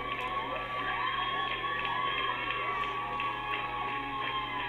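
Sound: crowd cheering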